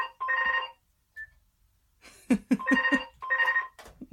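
A telephone rings in short repeated bursts of trilling, warbling tone, loud and clear with brief gaps between rings and no one talking over it.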